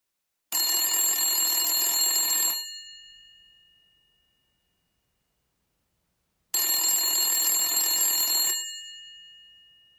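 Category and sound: household object, telephone ringing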